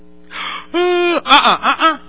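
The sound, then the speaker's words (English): A person gives an exaggerated, theatrical yawn: a breathy intake, then a long, loud voiced groan that slides downward and trails off in a few wavering, broken bursts. “I'm not talking about yawning.”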